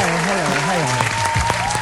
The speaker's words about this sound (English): Applaud her.